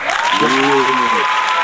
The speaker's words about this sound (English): we ought to give a good round of applause to Ms. V and Ms. Kiki